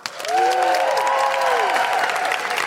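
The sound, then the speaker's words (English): A crowd applauds steadily to welcome a guest, a local doula from Reading, while several voices let out rising and falling whoops and woos. The clapping and cheering stay lively throughout. “Please put your hands together and make incredible wooing noises”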